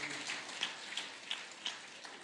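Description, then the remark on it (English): Soft, steady applause from a group, a dense crackle of many hands with a few sharper claps standing out at a regular beat; no voices over it. “Can we clap for that?”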